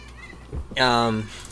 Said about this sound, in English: Fucking cat.